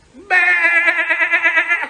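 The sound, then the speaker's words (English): A single long sheep bleat, loud, with a steady wavering tremble throughout that fades out at the end. No one speaks. “Bah! Bah! Oh, take that, sheeple. That was stop being stupid and sheep, okay?”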